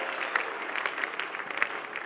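An audience claps their hands to give God praise, a dense, steady patter of many hands at moderate volume with no voices on top.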